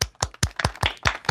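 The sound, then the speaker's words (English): Brief applause welcoming back a returning guest: steady, evenly spaced hand claps, about seven sharp claps in quick succession, fairly loud, with no voices. “Also with us, and we have to welcome her back with sustained applause,”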